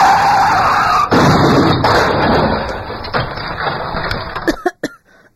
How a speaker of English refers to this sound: Oh, what happened? When I hit the brakes, the car spun out of control. We hit the... Holy shit, we smashed against a cliff face. Is everyone okay? I'm okay. Lucky you didn't hit head on. We kind of sideswiped the wall.